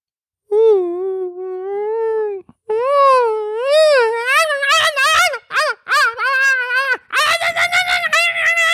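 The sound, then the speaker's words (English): A person imitates coyotes, starting with a long wavering howl and breaking into a string of rising and falling howls and sharp yips, loud and alone with no talk. “That's a pretty good impression of coyotes.”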